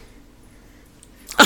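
After a stretch of near silence, an upset female dog lets out a single short, sharp whimpering cry that rises suddenly and loudly right at the end.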